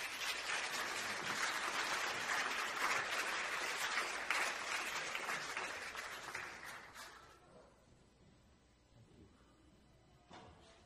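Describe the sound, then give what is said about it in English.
A crowd claps steadily for a group of boys who acted as helpers, a dense, crackling wash of applause that holds strong for several seconds, then gradually thins and fades out, leaving a few scattered claps. “Give my helpers a round of applause.”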